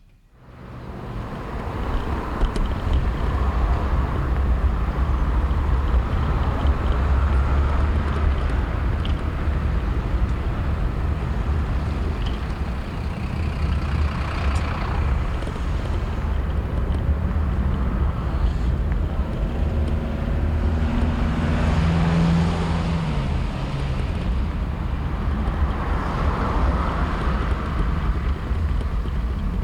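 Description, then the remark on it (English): A bicycle ride with artist Jeremy Deller through London street traffic around Highbury Grove, down the Essex Road and towards the canal: a steady, loud rush of wind buffeting the microphone over rumbling road noise, with passing vehicles rising and fading. No one speaks. “Today we're riding with Jeremy Deller, artist and recent winner of the Turner Prize, committed London cyclist, going around his neck of the woods in Highbury Grove, down the Essex Road, and then heading down towards the canal.”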